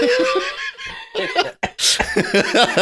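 Loud laughter breaks into a harsh cough partway through, followed by more wheezy laughing and another rough cough-like burst, with no speech.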